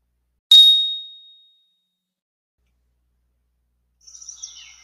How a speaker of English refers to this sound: I will ring a bell to start. There will be a pause as while I count silently, and then I will ring a bell when we are finished.